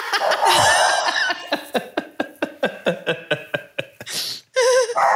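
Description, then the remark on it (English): A dog barks for a treat in a rapid, insistent string of about a dozen short yaps, after an opening whine-like yelp, with a brief louder cry near the end. “He's like, oh, you're recording something. I'm going to bark till you give me a treat.”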